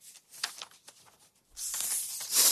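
Paper rips in a few short crackly bursts, then one long loud tear that swells and fades, with no talking.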